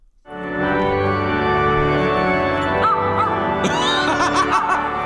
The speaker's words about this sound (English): That organ.